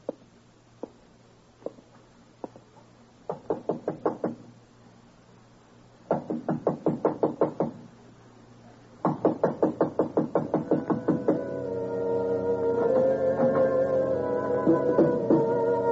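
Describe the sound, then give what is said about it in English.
Scattered footsteps and knocks build to a quick rhythmic run of taps, then a door is pushed open, ending in a long, sustained creaking sound, with no talking. “I'll never know who opened that door.”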